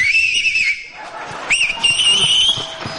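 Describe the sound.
A person whistles a warbling, nightingale-like tune without using their hands, in two bursts separated by a short pause, on a Radio Farda program. It's loud, with light knocks in the background.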